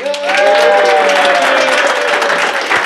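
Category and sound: crowd, audience applause and cheering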